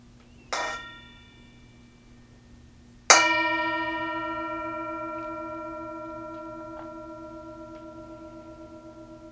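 A mindfulness bell, a Tibetan singing bowl, is struck twice, a light tap followed by a fuller strike, its clear metallic tone ringing out and slowly fading with a gentle shimmer. No one speaks.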